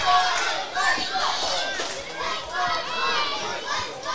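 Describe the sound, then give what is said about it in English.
Tigers fans cheering and shouting behind their team during a football (soccer) match, a steady, fairly loud wash of many voices with higher-pitched yells rising and falling throughout, without any single voice standing out. “A few of the Tigers fans getting behind their team.”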